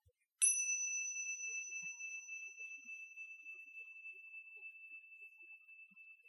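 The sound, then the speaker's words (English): A single meditation bell is struck once with a bright attack, then rings on in a long, steady, pure tone that slowly fades. The sound is clear, with no talking over it. “What I'll do is I'll sound this bell, and you can notice the sound of the bell moving through time.”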